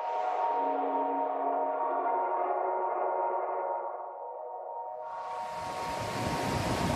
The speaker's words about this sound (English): The sea that laps onto the southern coast of Senegal stretches into crests of pale gray waves as far as the eye can see. The waves draw international surfers by day.